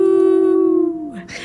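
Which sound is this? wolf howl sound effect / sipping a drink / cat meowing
wolf howl sound effect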